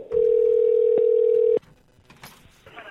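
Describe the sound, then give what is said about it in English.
A steady, loud telephone tone holds at one pitch for about a second and a half while a call is being placed, then cuts off abruptly, leaving faint background rustle and quiet noise. “Phone's making noise. I don't know why.”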